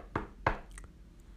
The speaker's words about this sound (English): That's when I heard something. A knock.